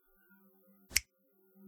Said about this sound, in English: I always remember talking that it's a great story about, you might have heard this, about Bono, who was doing this thing where he was clicking his fingers like this.